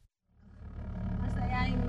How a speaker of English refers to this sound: I'm in the car with my parents. I drift away into the back seat as the car muffles out their words. But this is how I always hear them.